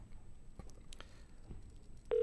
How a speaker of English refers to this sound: All right, phone is ringing. Here we go.